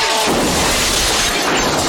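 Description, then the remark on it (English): Fake glass shatters loudly, a dense, bright crash of breaking shards that keeps clattering and tinkling for nearly two seconds, with no voices. “Fake ass glass.”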